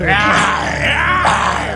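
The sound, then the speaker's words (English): A person growls in imitation of a lion, a loud, rough, sustained vocal roar lasting under two seconds with a gravelly, strained texture and a brief dip midway. “So I just started growling like a lion.”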